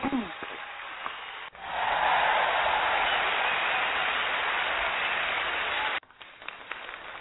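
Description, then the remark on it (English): A crowd breaks into loud, sustained applause that swells suddenly and holds steady for several seconds before cutting off, with brief speech-like sounds before and after. “All kind of applause around here.”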